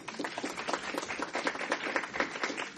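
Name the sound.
round of applause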